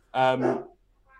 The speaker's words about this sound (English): Dog barking in the background. That's What kind of dog is it?